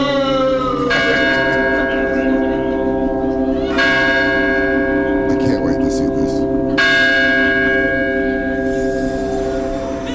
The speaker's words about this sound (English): Bell chimes.